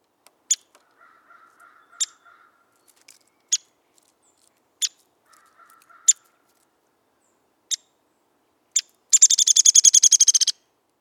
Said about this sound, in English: This is downy woodpecker.